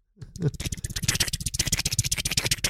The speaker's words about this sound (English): I'm typing furiously.